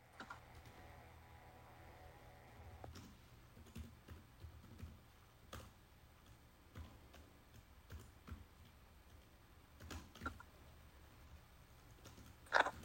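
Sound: typing on a keyboard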